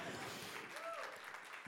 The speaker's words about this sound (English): First of all, let's just clap for the Lord.